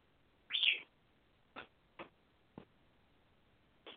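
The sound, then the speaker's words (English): A pet bird chirps for attention: one bright, louder chirp followed by four short, sharp chirps spaced irregularly over a few seconds, with no one talking. “Oh, we might have to have a bird help us tonight. He wants attention again.”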